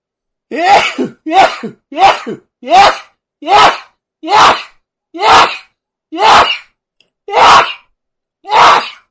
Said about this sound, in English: Bless you.